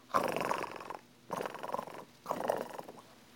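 A cat purrs in three rhythmic rumbling bursts, each about a second long, separated by short pauses. No voices are heard.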